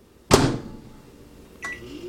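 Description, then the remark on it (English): A microwave door shuts with a sharp thud, followed a moment later by a brief tone as the oven starts up to cook bacon on a tray and a low hum settles in. “Let's put it in the microwave, give it a test, see if it actually cooks it well.”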